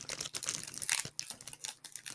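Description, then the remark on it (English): A Coffee Crisp candy bar wrapper crinkles and crackles as it is torn open, with irregular bursts of crisp plastic rustling and no voices. “All right, so I'm opening up the coffee crisp whenever we're ready.”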